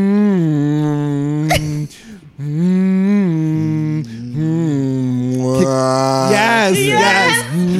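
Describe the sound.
A person imitates a rapper's signature hum: a low, droning melody in long sustained notes that slide up and down, pausing briefly a few times, turning rougher and breathier near the end.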